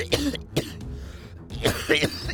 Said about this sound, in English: You glance at Typhon, and he is just coughing violently on the ground.